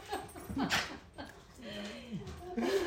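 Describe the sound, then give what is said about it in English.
A small dog yips in quick, sharp bursts at a much bigger dog, followed by a drawn-out whiny, whimpering tone, with a murmur of voices and soft laughter around it. “The hobbit is trying to take on the horse. And then the big dog's going, would you please make it go away?”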